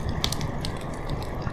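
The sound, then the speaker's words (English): A steady wash of rain-like hiss with sharp, irregular crackles of a fire popping through it, a calm, continuous ambient soundscape with no voices. “Can't you just imagine yourself sitting by the fire as the rain comes down with a book, some hot chocolate, just enjoying your night?”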